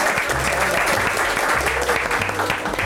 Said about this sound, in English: Yes, the Monday slow clap.